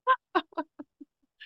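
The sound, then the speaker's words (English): A person's voice imitates a chicken, making about six quick clucks that grow softer and lower, followed by a brief higher squawk at the end. “Was born clucking.”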